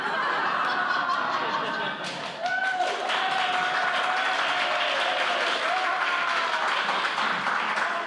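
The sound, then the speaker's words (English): Sustained applause from an audience at the first performance of the Sonic Summerstock Playhouse 2019, a dense wash of clapping that holds steady for several seconds, with scattered cheers, whistles and a few laughs mixed in. “Hold all applause for the next 30 seconds.”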